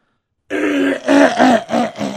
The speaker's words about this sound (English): Let me clear my throat.